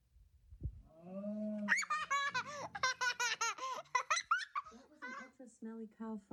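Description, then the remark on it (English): A child who is nearly three blows a low, drawn-out mouth-fart noise imitating a cow fart, then breaks into a run of bright, bubbly giggles and laughter. “How about you give us an animal fart?”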